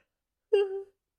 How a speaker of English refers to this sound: I'm going to yawn. Hold on.